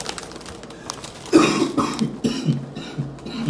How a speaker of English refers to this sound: You the only one coughing.